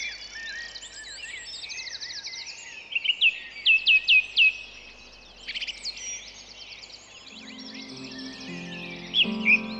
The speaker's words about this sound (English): It's a wonderful place actually to do this because we're in the middle of a very, very beautiful place in St. Anne's, and we've got the birds singing, and we can hear the trees, we can hear the wind in the trees around us.